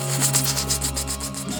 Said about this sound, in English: From a third direction, as that rustling returns.